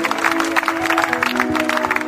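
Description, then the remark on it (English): An audience claps unto the Lord in praise, a dense, steady wash of hand claps that stays loud throughout, with a sustained low droning tone running underneath. “Let us clap unto the Lord.”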